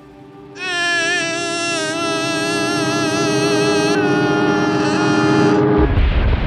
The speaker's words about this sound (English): I said, "Damn, it sounds like a plane crashed." An aircraft returning from a rescue operation had crashed on its approach nearby.